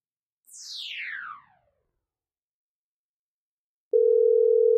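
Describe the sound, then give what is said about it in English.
A quick falling whoosh fades into silence, then a loud, steady telephone dial tone starts abruptly and holds unbroken to the end. No one speaks. “So let's get on the phone with David and let's see what he has to say.”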